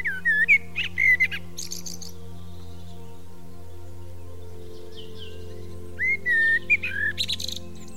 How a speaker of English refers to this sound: This is a blackbird singing in a tree.